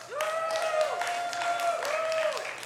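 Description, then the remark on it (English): A small crowd in a room claps steadily while a couple of voices let out long, rising and falling whoops and cheers for the Buccaneers in a Buccaneers-versus-Chiefs poll. The cheering is lively throughout. “By a show of hands, by applause, by as loud as you wanna get in the chat, go ahead and get ready.”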